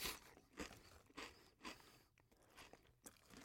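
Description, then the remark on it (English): Crunching of thick, crisp ultimate barbecue ribs flavoured potato chips being chewed, a quick series of sharp, brittle bursts in an irregular rhythm, fairly loud and up front with no talking. “Proper crunchy.”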